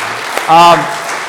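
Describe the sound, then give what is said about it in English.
An audience applauds the people who came out to the Love La Mirada event, clapping in a steady, dense wash of applause lasting the whole moment, with a short voiced shout or cheer rising over it partway through. “Can we give these guys a nice round of applause?”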